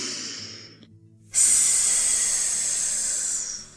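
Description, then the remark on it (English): A person takes a deep breath in, then exhales in a long, steady, loud hiss like a snake as part of a guided breathing exercise, a bright sustained breathy sound lasting over two seconds before fading slightly at the end. “Now take a deep breath in, and this time when you breathe out, hiss like a snake.”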